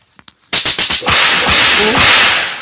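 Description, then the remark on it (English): A belt whip sound effect: two faint snaps, then a loud rapid burst of four or five sharp whip cracks, followed by a sustained harsh crackling wash that slowly fades out. “So you get the belt this week.”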